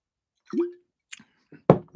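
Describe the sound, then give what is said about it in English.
Water splashes and plops in a few short, separate bursts, fairly quiet, as water is poured unevenly into a dish for animals to drink, with brief gaps of silence between them. “I want to see who all's here and say hi to all my good friends and neighbors and give you a drink of pure, wonderful water.”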